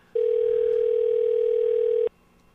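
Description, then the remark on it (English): A single ringing tone on a phone line as a phone number is called: one steady, loud electronic burst lasting about two seconds, starting and stopping abruptly, with nothing else audible around it. “I called the wrong number.”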